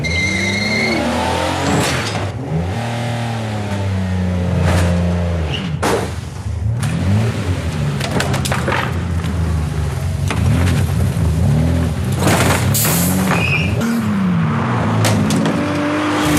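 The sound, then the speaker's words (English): A car engine revs loudly and repeatedly, pitch rising and falling in surges, with harsh bursts of tire screeching and skidding mixed in throughout. No one speaks. “Despite causing a two-car wreck while intoxicated, Paul Pelosi is still an above-average driver for the Bay Area.”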